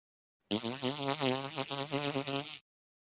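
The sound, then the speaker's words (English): A wet fart, one continuous buzzy, sputtering blast lasting about two seconds, low-pitched with a wavering tone and a noisy hiss on top, loud and heard on its own without talk. “That was a wet fart, if you couldn't. And not a good wet fart.”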